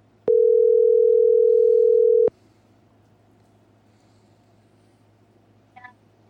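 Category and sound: signal or alarm, telephone dial tone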